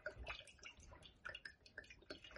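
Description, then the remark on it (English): Olive oil glugs and trickles into a pot, a quiet, irregular run of small plops and liquid gurgles with no voices. “I'm just going to tip into the pot olive oil.”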